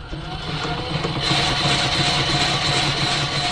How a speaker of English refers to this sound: Here's how it works. You open the door, pull out a drawer, take a wax cylinder from its sleeve, insert it horizontally onto the player, turn the crank a little bit, and place the needle on the spinning cylinder.